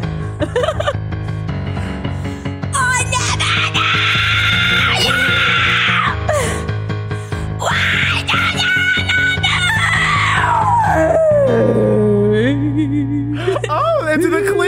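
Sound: person screaming loudly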